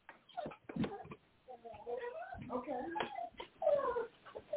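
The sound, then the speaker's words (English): A female dog whimpers to be let outside, letting out a string of high, wavering whines and soft yips that rise and fall in pitch over a few seconds. “Yep, she needs to go out.”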